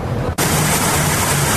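Water gushes loudly from a broken city water line, a dense, hissing roar that briefly dips and then surges back at full strength, steady, with no voices.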